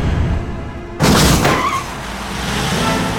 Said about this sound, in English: Yes! They've made it! Both trucks have hit the landing ramps. 165 feet, they've done it!